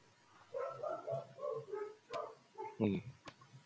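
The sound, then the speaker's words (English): A couple of puppies yip and whimper in the background in a quick run of short, high-pitched cries, with one sharper bark near the end, all faint against a quiet background. “Yes, I did hear a couple of puppy dogs in the background there.”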